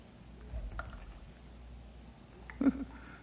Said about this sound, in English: Hey, what's that dripping I hear? Could be an underground spring, I reckon. Or moisture on the roof with a...